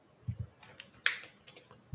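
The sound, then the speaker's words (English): Typing on a computer keyboard: a quick, uneven run of crisp key clicks with a few soft low thumps between them, fairly quiet, with no voices. “Yo, get my keyboard ready.”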